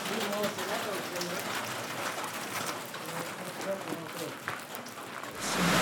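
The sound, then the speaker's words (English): Heavy rain pours down hard around a cafe in a steady, dense hiss that fills the whole stretch, growing louder near the end, with faint voices murmuring underneath. “The rain starts to come down hard, and we go deeper into the shelter of the cafe.”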